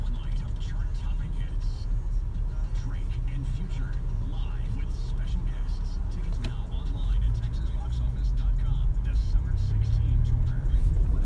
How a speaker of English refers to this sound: there's a live stream cop chase right now, man. I wanna get home. I need to watch that, man.